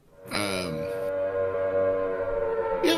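A siren wails steadily through a trailer park during a tornado warning. Its tone rises at first and then holds a long, sustained pitch. It sounds moderately loud, with no one talking over it.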